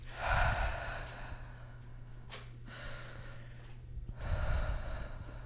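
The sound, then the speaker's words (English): A voice imitates heavy breathing, with two loud, noisy breaths at the start and end and a sharp gasp in between, over a low steady hum. “It's now an ASMR breathing podcast.”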